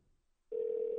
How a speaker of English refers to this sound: Ring, ring, ring. That's all I hear.